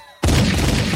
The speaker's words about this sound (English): Gunshot. You feel me?